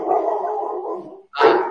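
A dog gives a long, drawn-out bark-like howl, then after a brief pause lets out one short, sharp bark. No one speaks.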